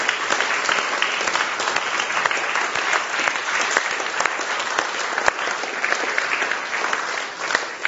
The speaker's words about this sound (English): Let's give everyone a round of applause and thank God for each other.